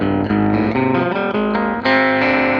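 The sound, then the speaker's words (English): An electric guitar run through an Electro-Harmonix Ring Thing, a digital sideband modulator pedal set to ring mod, plays a quick series of loud, metallic, bell-like notes with buzzy, clangorous overtones, with no talking. “But it's actually a sideband modulator, so it does all this different stuff. So it will do ring mod.”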